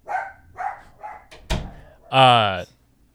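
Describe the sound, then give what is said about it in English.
The dog Clark, upset, lets out three short barks, then a sharp thump sounds, followed by one long, loud, drawn-out bark. “Get that dog out of here.”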